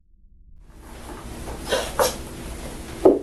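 Three separate knocks on an interrogation room door, moderately loud, spaced unevenly over a few seconds against a low background hum, with no voices.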